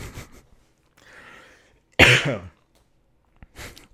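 A person coughs several times after laughing at a joke, with one loud, harsh cough in the middle, a softer breathy exhale before it and a brief cough near the end. Clear, with no talking.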